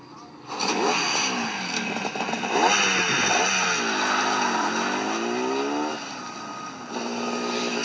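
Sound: motorcycle engine revving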